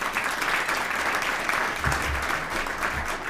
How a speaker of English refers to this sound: Let's give her a nice round of applause again.